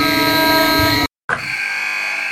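A loud, harsh game-ending buzzer sounds in two long blasts split by a brief silence, the second slightly thinner in tone, with no talking.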